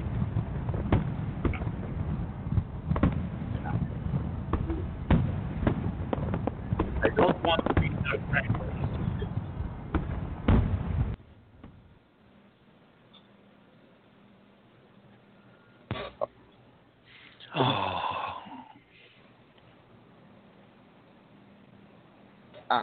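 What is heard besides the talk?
fireworks exploding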